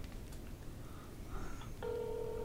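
A phone line hisses and crackles for a moment, then a steady, low-pitched ringback tone comes in, the sound of an outgoing call ringing on the other end.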